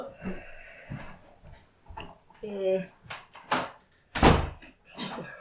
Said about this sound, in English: I closed the door. To the cats? No, to the laundry room.